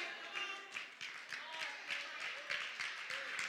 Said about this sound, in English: Now they tell me online that when people clap and shout, they only hear like 10 people. We're going to fix that, guys. We're going to get you some microphones so you can hear everybody screaming and hollering.